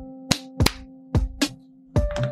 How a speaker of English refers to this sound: I'm gonna clap just because.